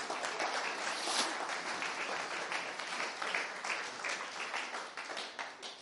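A crowd applauds steadily, a dense wash of many hands clapping at once that stays fairly loud throughout and thins slightly toward the end, with no voices standing out.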